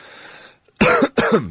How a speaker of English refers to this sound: Yes, that's a cough, yes.